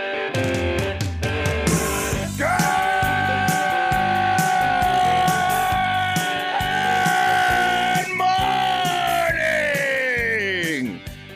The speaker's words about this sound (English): That's why you're listening to my gut-wrenching scream.